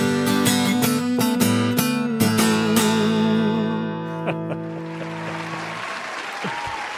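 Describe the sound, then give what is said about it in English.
Loud sustained musical chords with sharp drum-like hits ring out, then fade as a steady wash of clapping takes over for the last few seconds. “It's an odd sensation giving yourself a round of applause.”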